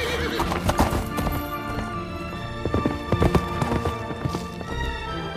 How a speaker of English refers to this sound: Yeah, so they gallop off to Edoras, which, and then that scene right there when they show up is one of my favorite stretches in the film, for sure.